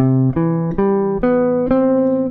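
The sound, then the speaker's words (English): A C major 7 arpeggio played alone as five steady ascending notes, evenly spaced about half a second apart, each ringing bright and sustained into the next without a break. “So What are the third and the seventh, the guide tones of C major 7? Here's the arpeggio.”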